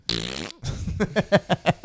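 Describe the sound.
A hand-made fart noise, made with a hand pressed against the face: one long, raspy, buzzing squelch, a brief pause, then a quick rhythmic run of about six short sputtering bursts, fairly loud.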